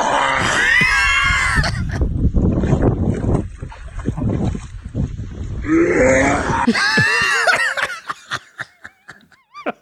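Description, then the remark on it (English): A dog hacks and retches in two long, shrieking, wheezy bursts, with rough gagging noise between them, then trails off into a few short, sharp clicks, as it coughs up lily pad leaves it swallowed while swimming. “And yes, the dog is perfectly fine. It's just coughing up. It's just coughing up the leaves.”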